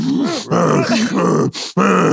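A man in an emergency in a hospital emergency room corridor grunts and shouts in a series of loud, harsh wordless bursts, his low voice straining and rising in pitch, with short breaks between outbursts.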